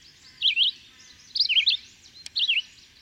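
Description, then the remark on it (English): A red-eyed vireo sings three short, warbling phrases separated by brief pauses, clear and about 20 yards away along the line of a forest, against a quiet, faintly hissing outdoor background. “When 20 yards distant, I hear all along the line of the forest the incessant warble of the red-eyed vireo.”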